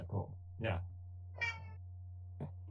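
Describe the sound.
A person imitates a cat, giving a few short, nasal meows in quick succession, moderately loud, over a steady low hum.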